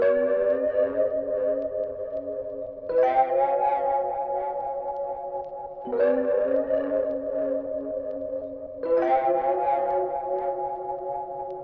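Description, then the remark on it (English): A lo-fi keyboard, processed in Logic with a tape plugin and pitch bend, plays four sustained chords, each lasting about three seconds, with a wobbly, bending pitch and a soft, smeared tone. No one speaks. “And with those two effects, along with the pitch bend, this is what the keyboard sounds like.”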